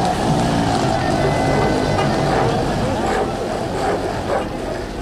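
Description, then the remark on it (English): Busy street ambience in the old Medina of Marrakesh, where BMWs and horse carts jockey for position on narrow streets: a dense, unbroken wash of traffic rumble and engine drone mixed with an indistinct murmur of voices, holding steady and fairly loud throughout. “Every inch of the old part of the city looks like it's covered in concrete and asphalt, and all of it is constantly buzzing with human activity.”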